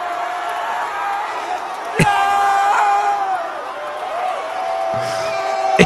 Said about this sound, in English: And the cat is saved. No! And the crowd goes wild.